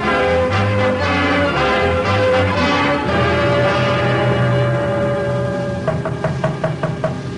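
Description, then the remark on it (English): A rapid series of about seven sharp knocks on a wooden door near the end, rapping over sustained, dramatic orchestral music that plays throughout. “What's that? Someone's at the door, Ma.”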